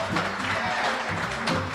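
A crowd claps steadily for the band, a dense wash of applause that holds at a fairly even loudness, with a faint low hum of voices or instruments underneath.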